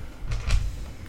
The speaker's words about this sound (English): I'm not looking, I'm hearing the noise of the dice. It's okay, I rolled multiple ones.